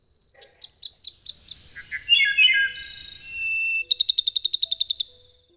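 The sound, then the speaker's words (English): A songbird sings a lively, varied phrase: a quick series of bright upslurred chirps, a descending warble, then a fast, even trill of rapid notes, clear with no voices; one of the songbirds migrating north from Central and South America. “Birds, huh?”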